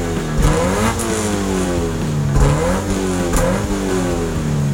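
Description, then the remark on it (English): A car engine revs repeatedly, its pitch climbing and dropping in several loud surges, with a steady throaty rumble underneath and no voices. “Come join us on a quick spin down memory lane, and let's get revved up.”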